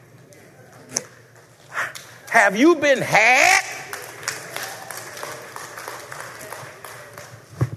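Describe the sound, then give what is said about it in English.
Scattered, sparse clapping from just two or three people in a live crowd, thin and uneven, heard under and between a man's amplified speech about having no phones at the table. “y'all, two or three of y'all clapping because the others, I know what the problem is.”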